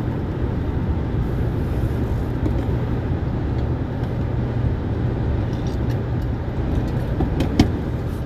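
Steady low rumble of an Acura car in motion on a road with little traffic, heard from the cabin, with constant road and engine noise filling the whole stretch and a faint click near the end. No one speaks.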